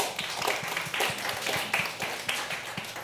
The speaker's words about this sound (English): Round of applause